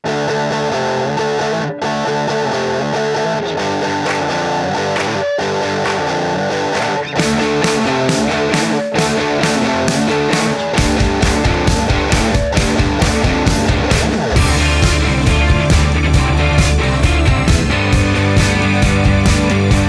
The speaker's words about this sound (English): That guitar at the beginning, that na na na na na na na na, that is a PV amp about this big, teeny, teeny, tiny. And someone had said, and this confirmed the experience, that like tiny amps are, can be really good to sound huge.